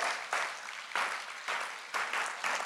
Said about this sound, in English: Come on, you got to keep clapping. You got to keep clapping. You got to keep clapping.